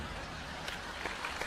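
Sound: audience clapping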